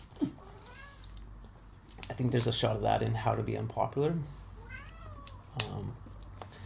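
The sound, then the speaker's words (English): A female domestic cat meows several times, drawn-out rising and falling cries mixed in with a man talking casually over them. “I think I gotta let my cat out. She's meowing.”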